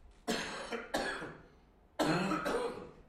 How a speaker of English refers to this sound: I'm going to have a little cough, one moment.